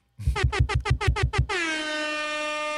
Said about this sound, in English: I can find this damn air horn. There we go.